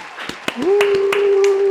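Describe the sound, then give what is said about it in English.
A brief round of applause, with a few sharp hand claps in a loose, steady rhythm. A sustained, rising vocal cheer or hoot joins partway through and holds under the clapping. “So, you know, little round of applause because holy shit.”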